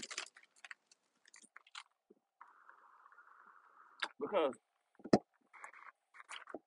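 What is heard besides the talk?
drinking water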